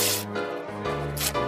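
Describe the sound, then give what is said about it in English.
A paper arrest warrant is ripped into little pieces in two sharp, noisy bursts, one at the start and one near the end, over a steady tonal music bed with no talking. “And now it's plenty of legal writing on a heap of mighty little pieces of paper.”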